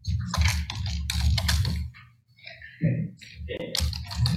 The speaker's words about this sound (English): we can hear you typing there if you could mute that.